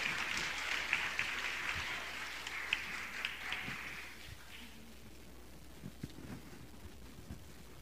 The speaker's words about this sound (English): Don't this crowd look good this morning? Give them a hand today. Amen.